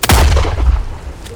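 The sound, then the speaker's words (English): A single loud gunshot from a Luger pistol cracks out sharply, followed by a deep booming rumble that slowly fades. No voices are present. “We raced back to Warren's cabin and found poor old Sheriff Warren laying dead on the ground, the snake stick man standing over him, a smoking Luger pistol in his hand.”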